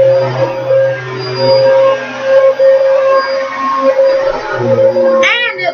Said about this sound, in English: You can really hear the roar of the engine from here. It's amazing how long it is.